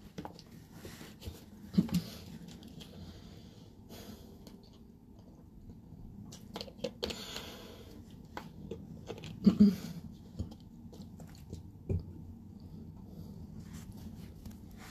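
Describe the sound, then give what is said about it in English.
Quiet mouth sounds of someone drinking water: soft sips and wet swallows spaced out over several seconds, with small clicks and gulps against a faint background hush. “Let me just give myself another water break.”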